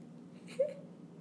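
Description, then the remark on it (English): A cat, Ghost Cat, gives a single short, soft meow, a brief whiny cry over a low, steady background hum. “Uh-oh, ghost cat saw a ghost.”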